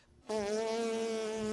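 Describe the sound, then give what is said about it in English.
After a brief hush, a group of people abruptly buzz their lips together on one steady, loud pitch, imitating a trumpet with a raspy, sustained drone that holds to the end. “All right, everybody sing that note with a buzz. Come on, be a trumpet.”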